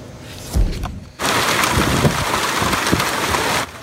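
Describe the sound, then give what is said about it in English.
Heavy hail pounds down in a dense, steady roar during a storm in the southeast part of Edmonton, Canada, starting abruptly, with scattered sharper impacts and a low thump near the start, then cutting off suddenly. “This is Edmonton yesterday. The southeast part of the city hit with hail.”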